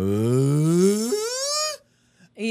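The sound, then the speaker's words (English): A loud vocal warm-up to find vocal range: one voice starts very low and slides steadily upward in a long, resonant glide that sounds almost like a moo, then breaks off into silence. “To try and get my range.”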